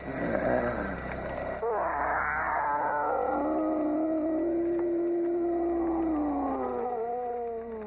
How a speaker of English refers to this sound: a really imposing villain in Madman Mars. And then one of his most striking features, at least for me, is the way he grunts and growls throughout the entire movie. He's almost kind of like a caveman, and you basically hear him more than you see him.